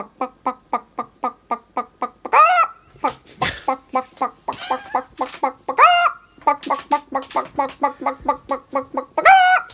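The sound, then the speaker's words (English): A chicken clucks in a steady, rapid series of short clucks, interrupted by several louder, drawn-out squawks before the quick clucking resumes. “I mean, what did she put on her passport under career? Chicken translator. Chicken expert. Chickenologist.”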